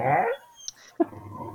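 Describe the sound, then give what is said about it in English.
Several dogs whimpering and growling in a studio that doubles as a dog play area, a low rumbling vocalization followed by a brief high whine and then a sharp yelp with more low grumbling, no talking. “Like a lot of stuff is happening over a lot there. A lot of dogs.”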